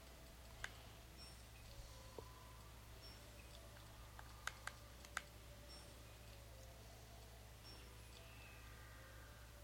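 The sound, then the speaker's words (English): A few sharp, sparse keyboard clicks tap out irregularly over a steady low electrical hum as someone types into the game Puzzle Quest, with a quick cluster of keystrokes near the middle and no talking. “I'm typing something.”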